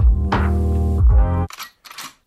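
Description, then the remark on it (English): A voice imitates a gun: a low, buzzing, droning tone for over a second, then two short, hissy bursts of noise with a brief gap between them. “That's my one gun sound effect, ….”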